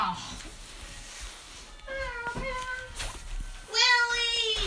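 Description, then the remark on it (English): A cat named Lily meows twice, a drawn-out, wavering call followed by a louder, longer one that bends down in pitch, with faint background murmur between them. “They're doing their weird cat.”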